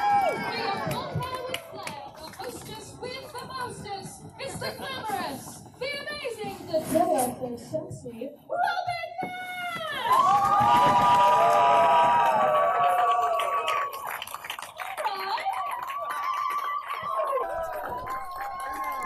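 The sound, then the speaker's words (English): A packed audience at a cabaret evening at the Grove Theatre, Eastbourne, claps and cheers in a dense, steady wash of applause, with loud whoops and shouts rising above it partway through, then the noise gradually thins out. “Ladies and gentlemen, clap your hands, stamp your feet, throw your knickers in the air.”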